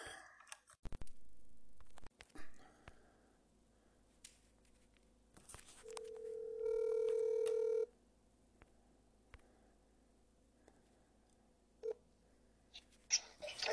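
Scattered soft clicks and taps of a phone being dialed to bring a guest on a Facebook Live sports show, then a steady electronic ringing tone for about two seconds, followed by a few more clicks. No one speaks.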